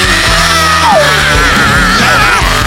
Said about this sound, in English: But they're like, he's like, yo, once you hear that scream, it's like, oh, it's on. It's on. So save that voice, bro. We need that scream.